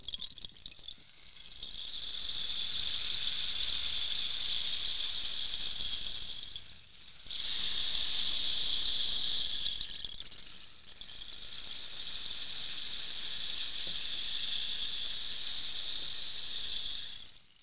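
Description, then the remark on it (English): A long wooden rain stick with something like beans inside is turned over three times, each pass a steady, bright rushing hiss like rain lasting several seconds, with short gaps between turns and no voices. “It's long and it's wood with something like beans inside that make it sound like rain.”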